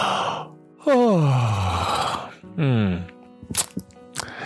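A person lets out a long, loud yawn that slides downward in pitch, followed by a shorter second yawn and a few soft breathy clicks, with no talking.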